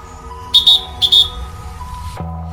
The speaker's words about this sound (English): Once again, season's greetings to all, and may this be the only inadvertent whistle in your day.